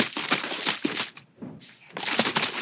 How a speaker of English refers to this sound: I was swishing around my water bottle like that.